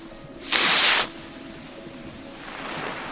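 A rocket firework goes off in one loud, hissing blast lasting about half a second, then fades to a steady low background hiss with no voices.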